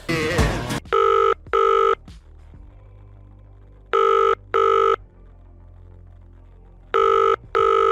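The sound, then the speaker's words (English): A telephone rings for a phone call in an end-credit scene, in three paired bursts, each double ring loud, separated by pauses of near silence with a faint low hum underneath. “Who was behind that phone call?”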